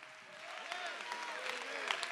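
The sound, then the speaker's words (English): A church audience claps hands in praise of Jesus in a dense, steady patter of many overlapping claps, fairly loud throughout, with faint voices and cheering woven underneath. “Somebody clap your hands with me and give him praise and glory right now.”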